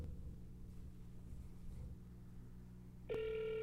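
A low rumbling background hum, then near the end a loud, steady electronic FaceTime video call ringing tone starts abruptly and sustains without a break. No one speaks.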